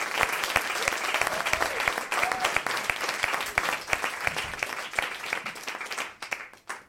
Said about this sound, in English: Please put your hands together, take them apart again, put them together, and make a clapping noise for your final act of The Best of Spark,